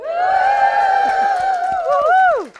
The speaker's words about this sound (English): So give me a cheer if you're a bad Beti.